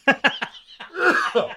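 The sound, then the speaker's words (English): A quick run of three sharp, hacking coughs, followed by a raspy, strained wheeze and sputter as someone struggles to catch their breath after inhaling their own saliva, fairly loud. “Coughing.”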